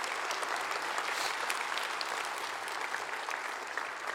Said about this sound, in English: And we as a congregation are blessed to have men like this serve us in the way that they do. Would you thank them with a round of applause for just a moment this morning?